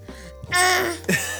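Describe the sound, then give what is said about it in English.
A baby's breathing: a few short, breathy gasps and huffs, the middle one longer with a soft, whiny moan in it, with no one talking. “You wanna hear some baby breathing?”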